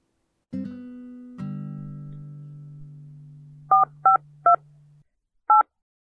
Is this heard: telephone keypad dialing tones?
yes